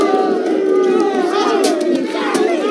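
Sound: crowd booing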